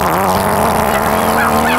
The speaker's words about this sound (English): It's so angry. If a fart could yell at you. I know. That's a rage fart. If a fart could be in all caps. And bold.